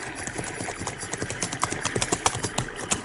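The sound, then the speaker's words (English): Horses' hooves clip-clop in a busy, uneven patter of sharp knocks as two horsemen approach at a walk, riding a sorrel and a jet-black horse named Lobo, the steps overlapping, with no voices over them. “I stopped to cross a stream, when from the gathering shadows I saw 2 horsemen approach.”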